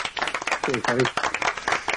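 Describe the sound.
A brief, lively burst of clapping from a small group, given as a round of applause for an answer, the rapid claps running continuously for a couple of seconds while a voice calls out over them.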